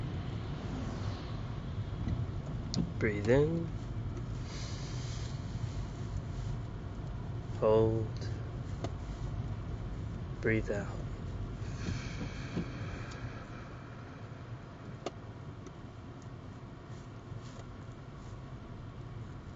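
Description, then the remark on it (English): A steady wash of wet road noise and low traffic rumble runs throughout, with occasional vehicles swelling past. A calm voice speaks a few short phrases over it. “Rain traffic.”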